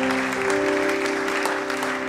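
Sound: audience clapping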